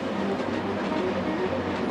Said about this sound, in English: We have to imagine him lying in bed as a teenager, listening to the trains behind the house and thinking about his future.